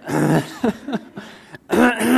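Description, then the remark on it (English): An audience clears their throats all at once in a dense, overlapping burst of raspy noise, fading briefly before another loud wave of throat clearing and a bit of laughter rises at the end. “Should we just all clear our throats at once and get it over with, right?”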